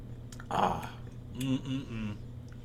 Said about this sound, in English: Well, let's take our first sip.